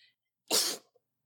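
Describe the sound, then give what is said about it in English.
A single forceful sneeze bursts out, a sharp, noisy blast lasting about a third of a second, followed by near silence and a faint breath. “I sneezed so hard, dear God.”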